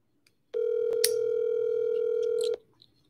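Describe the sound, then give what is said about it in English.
A steady telephone dial tone hums for about two seconds, with a few brief clicks over it that could be keypad presses, then cuts off abruptly into quiet. No one speaks. “If you guys are scared, just don't punch in your phone number.”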